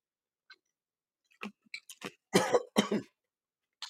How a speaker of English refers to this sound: How the hell do you choke on water and take a little sip?